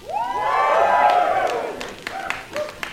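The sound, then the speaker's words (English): A circus crowd cheers loudly for Ringmaster Roar, many voices rising in overlapping high whoops and shouts that swell for about a second and a half, then fade into scattered claps and a few lingering calls. “I ask everyone in the audience to give a big cheer.”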